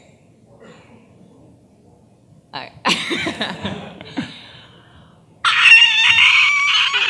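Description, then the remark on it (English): A person speaks briefly, then a voice lets out a loud, raspy, high-pitched screech imitating the cry of the character Omnigal, held steadily for about two seconds until the end. “And well, I am gonna make just at least a little screech.”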